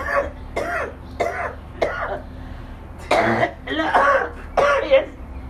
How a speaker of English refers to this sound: It ain't the wrong cough, it's the marijuana cough, y'all. Don't get it twisted.